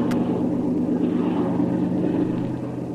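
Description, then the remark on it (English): A motorboat engine roars steadily at full throttle out in a harbor, a loud, continuous droning rumble with a churning low hum that holds for the whole stretch without any voices. “I'm giving her the gun. She's making all the speed she's capable of, and that's not much.”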